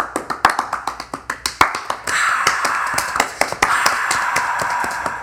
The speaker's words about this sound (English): I'm going to start my slow clap again.